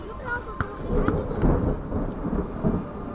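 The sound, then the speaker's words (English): A thunderstorm with steady rain pattering while deep, rolling thunder rumbles continuously underneath, punctuated by a few sharp drip or crackle transients. “There are things called thunderstorms. They are cacophonous and swaggery and wet, and you may have the good fortune of getting caught in one.”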